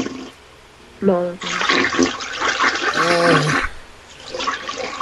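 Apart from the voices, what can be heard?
toilet flushing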